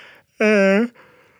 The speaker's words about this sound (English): Sorry for the yawns. I'm not going to edit them out. I'm just going to tell you I'm beat.